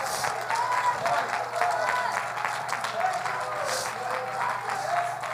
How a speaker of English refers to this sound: Clap your hands unto the Lord and magnify Him.